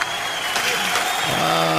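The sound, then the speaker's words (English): An audience claps together in a steady, dense wash of applause that holds at an even loudness for about two seconds, with a faint voice rising through it toward the end. “Give you one of these a slow clap.”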